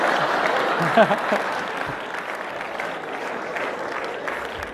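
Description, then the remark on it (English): A crowd applauds steadily, a dense wash of many hands clapping at a fairly even loudness for several seconds, with a few whoops and voices mixed in. “If you want to keep that degree behind your name, you have to, yeah, clap, bitches, yeah?”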